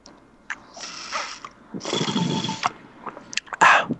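Two drawn-out slurping sips of water, each a breathy, hissing pull lasting under a second, followed by a few short wet clicks and a brief final gulp-like burst.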